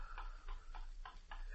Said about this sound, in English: there is no sound in the room except Sidney's heavy breathing and the rhythmic ticking of the clock